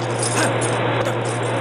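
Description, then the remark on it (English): Keys jangle and clink as someone works a door lock to get in, a few light metallic rattles over the steady hum of a fan, with no talking. “Just gotta get in this door. Dead keys.”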